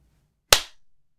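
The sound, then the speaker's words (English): A single sharp, loud crack of hands clapping together in perfect unison, timed to the turn of a second called out from a clock, so tight it lands as one hit, followed by a brief fading tail and then silence. “So I call out the seconds, and then we clap on that when it turns to that.”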